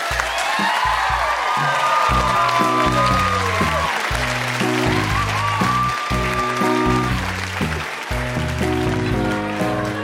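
An audience claps steadily and loudly for the full length, a dense wash of applause with a melodic bass-heavy music track playing underneath.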